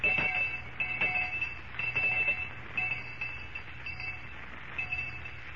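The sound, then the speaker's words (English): An electric school lunch bell rings continuously with a shrill, rattling buzz at a steady high pitch, fairly loud, with slight pulsing in intensity and no voices over it. “All right, Miss Perkins, I'll ring the lunch bell.”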